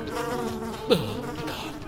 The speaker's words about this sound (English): With my left hand as I drove, I managed to roll down the window. And just as the song was ending, my bee nemesis flew out.